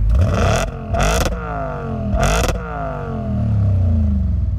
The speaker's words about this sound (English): A pair of car headlights piercing the dark, and the sound of Detroit's loudest, if not finest, beastly roar.